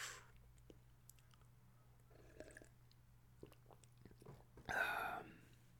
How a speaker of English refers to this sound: Quick sip of water. Water break, boss. Don't mind me, boss.